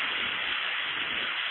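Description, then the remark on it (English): Sleet falls in a steady, dense hiss, a continuous wash of fine crackling patter that holds an even loudness throughout, with no voices or other sounds. “I don't believe that's rain. It sounds more like the sleet that we had a little earlier.”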